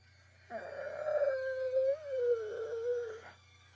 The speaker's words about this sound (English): And then you hear this strange creaking sound.